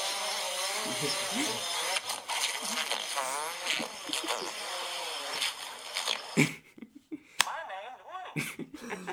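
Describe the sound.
A small drone's rotors buzz with a high, steady whine that wavers in pitch, voices talking underneath, then the hum cuts out into a few sharp clicks and knocks.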